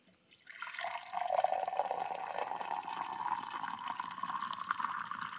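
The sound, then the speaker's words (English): Coffee is poured steadily into a white porcelain mug, a continuous splashing stream that starts abruptly and rises slightly in pitch as the cup fills for about five seconds, with no voices. “Charles grabbed the only white porcelain coffee mug that was there and proceeded to pour himself a cup of coffee”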